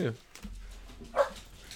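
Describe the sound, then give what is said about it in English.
A couple of short barks from dogs, one at the very start and another a second later, sounding muffled against a quiet low background rumble. “Hold on, I have to let the dogs out.”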